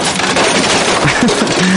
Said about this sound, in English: That was actually an unintentional garbage crashing. I apologize for that.